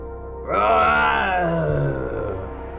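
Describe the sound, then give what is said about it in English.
A zombie named Gordon roars in a large chamber with a stone altar surrounded by a lake of blood: a loud, guttural, drawn-out groan bursts in, holds with a rough, throaty tone and slowly sags in pitch over a couple of seconds before trailing off. “The zombie Gordon roars.”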